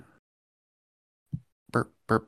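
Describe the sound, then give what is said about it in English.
A short series of guttural burps: a low grunt-like one, then two louder, rougher bursts in quick succession, with silence before them. “burp.”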